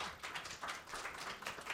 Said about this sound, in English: She's really anointed in her preaching, so let's give her a round of applause as she comes up, and let's just be ready for a real feast on God's word, okay?